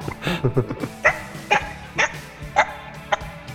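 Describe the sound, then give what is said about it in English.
A laughing gull gives a run of sharp, nasal, yelping calls, a quick cluster at first, then single notes spaced about half a second apart, loud and with no talking. “That was a gull. That was a laughing gull.”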